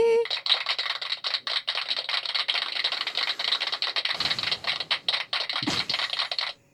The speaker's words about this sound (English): It's a long sound bite, isn't it? It's a beautiful, beautiful group of people coming together and clapping for what is the beginning of a new year.